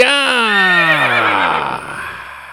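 A single loud horse whinny, starting high and shrill and sliding down in pitch as it trembles and fades, with no talking over it.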